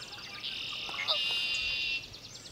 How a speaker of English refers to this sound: These marshes, lakes, and woodlands are spring pit stops for migrating birds heading north and a home for local birds looking to find a mate. And as sunlight starts to flood the sky, the bird's chorus brings a smile to David Sibley's face.